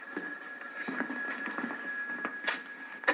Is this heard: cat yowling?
no